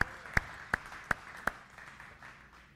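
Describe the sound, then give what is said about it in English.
An audience at a church service claps hands in praise to the Lord: five sharp, evenly spaced claps ring out, then dissolve into a softer wash of scattered crowd applause that gradually fades. No one speaks. “Why don't you give the Lord a hand clap of praise right now?”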